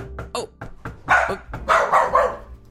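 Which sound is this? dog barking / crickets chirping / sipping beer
dog barking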